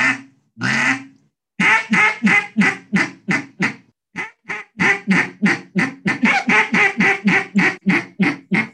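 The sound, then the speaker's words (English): A mallard duck call being blown, starting with a couple of long drawn-out quacks, then a loud rapid run of short, raspy quacks in a steady descending cadence, with no talking. “I do have one duck call, so I don't have a goose call I can demo for you, but I do have a mallard call if you would like to hear a demo.”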